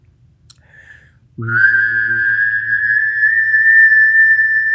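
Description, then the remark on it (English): A person whistles a steady, high, sustained tone while humming a low note underneath at the same time, both starting together after a short click and holding for several seconds, clear. “So I can also whistle and hum at the same time.”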